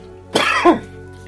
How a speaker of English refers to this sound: coughs